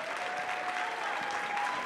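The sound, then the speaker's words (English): An audience at a conference claps steadily to honor leaders, a dense wash of many hands filling the full two seconds at an even, fairly loud level, with a faint sustained tone running beneath it. “Can we give them a hand for their leadership?”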